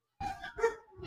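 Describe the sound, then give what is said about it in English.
Three quick, high-pitched dog barks in a row, not very loud, with no talking over them, as the dogs bark at someone walking by the house. “That your dogs know that no one can be around your mom.”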